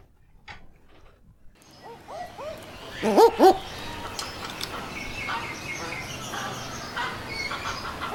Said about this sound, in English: Shall we take a listen to a barking owl?